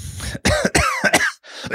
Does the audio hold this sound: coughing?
yes